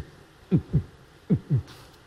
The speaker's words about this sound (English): It's amazing to hear somebody else's heart pounding.